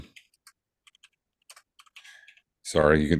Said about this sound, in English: That's me typing to look up.